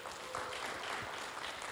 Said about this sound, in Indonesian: Siapa yang mau beri tepuk tangan pada Tuhan?